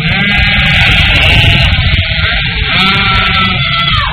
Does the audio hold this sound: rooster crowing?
no